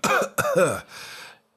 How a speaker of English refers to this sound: Don't you think this is a little premature? I just have a light cough.